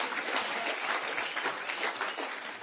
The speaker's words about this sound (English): Yeah, come on, let's give God a clap. Kom op, laten we God een applaus geven.